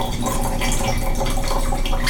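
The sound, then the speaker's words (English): Wine pours steadily into a glass during a wine tasting for about two seconds, a continuous gurgling trickle, with no talking over it. “Oh, are you pouring?”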